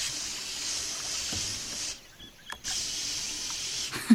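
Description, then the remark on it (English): Two long hissing bursts of mosquito repellent spray, a steady bright airy hiss lasting a couple of seconds, a brief pause, then a second shorter spray. “Do you have the mosquito repellent?”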